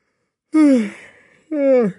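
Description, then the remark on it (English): A long, drawn-out human yawn with a breathy, descending voiced tone, followed after a short pause by a second, briefer yawn-like exhalation, both fairly loud. “Got another yawn in there, just to make sure.”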